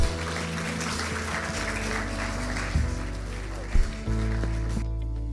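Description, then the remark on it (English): An audience at Resound Church in Melbourne claps steadily to give God a hand, a dense, sustained wash of applause for about five seconds over soft, held low keyboard chords, then the clapping cuts off, leaving the chords. “Let's give God a hand.”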